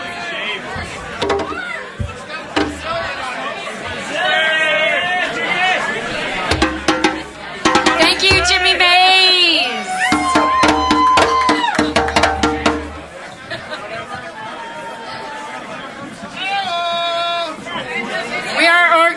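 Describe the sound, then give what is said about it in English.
A loud, dense, very enthusiastic crowd chattering during a live music set at the Starlight, many overlapping voices with occasional raised shouts and whoops rising above the steady hubbub. “they played an amazing set before a very enthusiastic crowd, which you will hear.”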